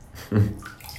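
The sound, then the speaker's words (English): Water sloshes briefly in a filled bathtub of very hot, green-looking medicinal water at home, a single low swirl that swells and fades within a moment, followed by quiet ambience. “I am currently in a very hot bathtub with this like green looking swamp water that is to be very medicinal.”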